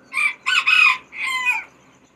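A hen clucks loud and raspy, in a quick run of three squawking bursts followed by a longer drawn-out call, with no voices around.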